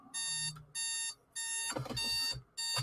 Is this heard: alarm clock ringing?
yes